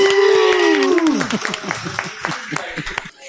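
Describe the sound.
A short round of applause: scattered, sharp claps begin under a loud cheering voice that slides down in pitch, then continue unevenly on their own for a few seconds before fading.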